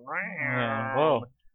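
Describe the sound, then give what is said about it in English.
A person imitates a cat with one long, whiny yowl that wavers in pitch, fairly loud, lasting just over a second before cutting off abruptly. “And it's like having three cats in the house. Like every now and then they both start.”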